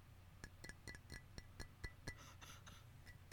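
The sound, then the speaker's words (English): A ceramic mug with water in it being handled: about a dozen light, sharp clinks and taps at an uneven pace, fairly quiet, over a low steady hum with no voices. “I have a mug, a ceramic mug in front of me.”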